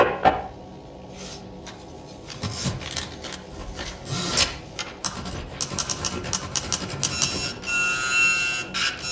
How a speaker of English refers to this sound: Am I to use the typewriter as well? Feed the paper through the typewriter, please.